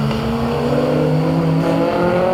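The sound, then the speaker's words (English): A Lancia Fulvia HF rally car engine revs loudly and continuously, its harmonic drone rising and falling in pitch as the throttle is worked, with no voices over it. “it's a virtually identical car to the Lancia HF Fulvia Fanaloni.”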